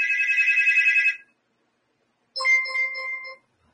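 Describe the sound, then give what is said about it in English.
A phone ringtone plays two electronic tonal bursts during an attempted phone call, each about a second long, separated by a short silence. Fairly loud, with no voices. “I don't think this phone call shit's gonna work out.”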